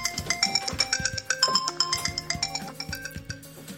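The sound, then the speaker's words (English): A phone ringtone plays a bright, quick melodic tune of chiming electronic notes in a steady bouncing rhythm, clear, with no one talking over it. “That is gonna fuck up my podcast.”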